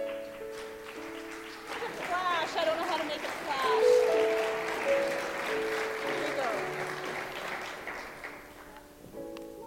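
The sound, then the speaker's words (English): A crowd welcoming a reverend to the stage breaks into sustained applause mixed with cheers and whoops, swelling to a loud peak in the middle before gradually tapering off, with steady organ or keyboard tones underneath. “that we can love and adore and cheer and welcome to the stage,”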